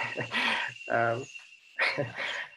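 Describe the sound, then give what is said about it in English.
A steady, high-pitched drone of many loud cicadas, heard through an open window, runs continuously in the background, while louder, short vocal-sounding bursts come and go over it. “Like right now here at Madhuvan, we have a lot of cicadas. So there's these bugs that chick, like I can open the window.”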